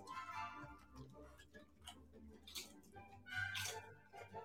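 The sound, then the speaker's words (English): A dog named Bishop, acting as a taste tester, crunches on food: a series of crisp, irregular crackling bites, with soft murmuring voices underneath. “I'm hearing the crunching.”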